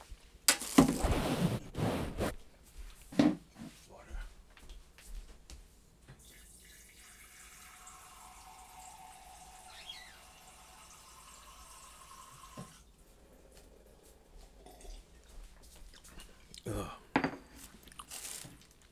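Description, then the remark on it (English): A kitchen tap runs steadily for several seconds as a glass is filled, with some clattering and handling noises before the water starts and a few sharp knocks after it stops. “Wait, I gotta get some water.”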